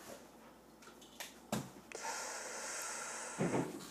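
A camera is knocked over: a few sharp knocks and a solid thump as it is bumped and tips over, followed by a stretch of rustling and scraping, then another dull bang near the end.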